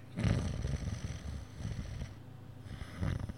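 An exaggerated, comic snoring noise made by a voice, with rumbling, rattly breaths rising and falling in a slow rhythm, moderately loud, with no talking.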